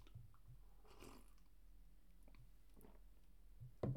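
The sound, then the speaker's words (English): Quiet sips of coffee, two soft slurps spaced a couple of seconds apart with faint mouth noises between, no talking, ending in a brief low thump. “Okay, so now let me take a sip of this coffee first of all.”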